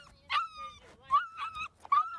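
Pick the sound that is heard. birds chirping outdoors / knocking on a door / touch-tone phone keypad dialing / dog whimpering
dog whimpering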